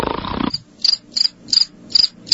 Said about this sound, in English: That's where you play the crickets. No, the crickets.